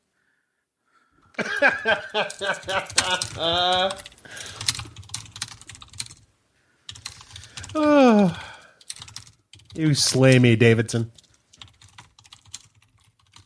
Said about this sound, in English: You have a loud keyboard. I mean, it's tracking on the waveform for the recording. I can tell when you hit enter. Or no, it's the space bar. I'm sorry. The highest peaks are the space bar.